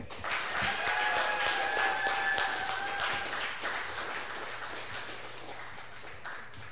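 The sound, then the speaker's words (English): An audience at the Tell Me More storytelling show at the Push Comedy Theater breaks into sustained applause for the next performer, a dense crackle of many hands clapping for several seconds, with a few thin cheers or whistles rising above it early on, then slowly easing. “So I would love it if you could give the warmest round of applause for”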